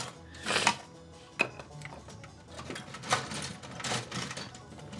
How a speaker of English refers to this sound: So me, when I do the dishes, I have this dish brush that I bought. And I use. It brushes, it scrapes the dishes right on off. Scrapes it all up and off and everything like that.